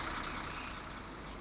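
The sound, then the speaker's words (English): A bus carrying an advertisement for Universal Studios theme park pulls alongside a limping DeLorean car, giving off a steady, loud hiss of air brakes over a low engine rumble. The sound holds even throughout, with no voices. “As the DeLorean limps along, a bus pulls alongside with an advertisement for Universal Studios theme park.”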